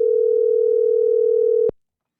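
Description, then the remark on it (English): A single steady ringback tone from an outgoing phone call played on the air hums for under two seconds, then cuts off abruptly with a small click into silence. No one speaks. “Let's go ahead and let you hear a little phone ringing on the air.”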